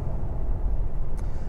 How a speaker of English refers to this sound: 2200 RPMs into fifth gear. I got to 750 degrees Fahrenheit on my turbo temperatures as I floor it past the slow-moving Murano, Nissan Murano, into fifth gear and into sixth gear.